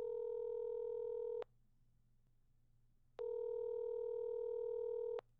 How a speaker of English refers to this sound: will you please connect that call?